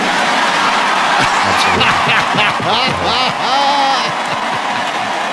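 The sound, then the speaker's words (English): A large crowd at the DNC roars continuously for about five seconds during Sarah Silverman's appearance, a dense wash of many voices with overlapping shouts and a few high whistle-like cries rising above it, loud throughout. “Listen to the crowd.”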